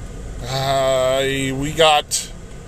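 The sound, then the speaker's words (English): Steady low rumble of a car interior moving slowly, at about 10 miles per hour in traffic on the interstate behind a Rule King truck, with a person's drawn-out voiced sound over it and a brief sharper noise near the end. “I'm going about 10 miles per hour on the interstate behind a giant...”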